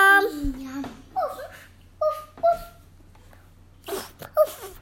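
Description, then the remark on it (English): A young child imitates a puppy with a series of high, squeaky yips and barks, one drawn-out cry followed by several short bursts spaced irregularly, fairly loud. “What does a puppy say?”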